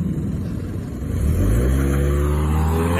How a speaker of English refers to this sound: She screeches away in her 2005 Toyota Tercel or whatever the fuck she's driving.